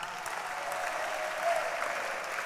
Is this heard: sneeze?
no